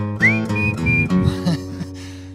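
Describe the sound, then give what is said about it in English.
A person whistles a short tune: a rising slide into a couple of held, clear notes, over a steady instrumental music backing. “How to whistle, folks. Just gonna have to bear with me here.”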